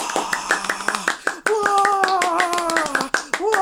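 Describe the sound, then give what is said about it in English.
The live studio audience filling the bleachers of the Dork Cave, there to watch a show being recorded live, bursts into applause: a steady patter of many hands clapping, while voices whoop and cheer over it in long rising and falling calls before the clapping carries on. “Can you just let our listeners know how many of you are out there with a round of applause?”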